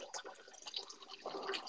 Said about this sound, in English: What the hell is that? Water.